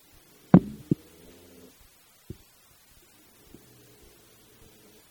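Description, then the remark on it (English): An RV water pump cycles with a few dull low thumps and short bursts of droning hum, then settles into a steadier, faint low hum as it runs continuously, supplying a moderate flow from the faucet. “Now, you heard it cycling, and then you heard it running continuously, and that was at a very nice, moderate flow coming out of the faucet, so that it will run like that and can provide you with a very consistent stream of water,”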